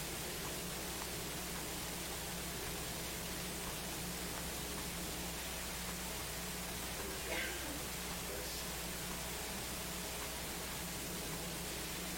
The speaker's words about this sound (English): Let's see now if that static still comes. It could have been from where it was.